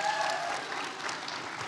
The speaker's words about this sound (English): Again, the applause meter is stuck at like, it's the same. So maybe after the service, we'll see who gets the greater shout.